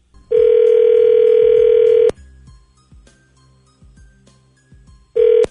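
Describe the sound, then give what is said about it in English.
A loud, steady telephone dial tone hums for about two seconds, then cuts to a series of soft dialing clicks before a ringing tone starts up again at the end, as the radio morning show Scotty and the Buzz on K-Rock 98.6 calls a listener. “and when we come back, we're going to give her a call, okay?”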